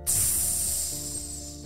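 A sizzling hiss like water hitting fire, as a tiny drop of toothpaste lands on a tongue, bursts in suddenly and holds steady, loud and bright, slowly easing off over a couple of seconds, with a faint low rumble beneath and no voices.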